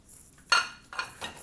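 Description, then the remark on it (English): Dishes are set into a dishwasher with three bright clattering clinks of plates and cutlery, the first the loudest, spaced about half a second apart, with no one talking. “I'm glad I already took care of that because now I'm covering my nose with my shirt as I load dishes in here because it smells really, really bad.”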